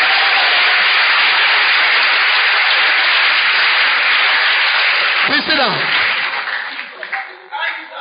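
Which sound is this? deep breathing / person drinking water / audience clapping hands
audience clapping hands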